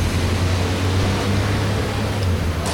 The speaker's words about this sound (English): So I also want the sounds of coffee being poured in.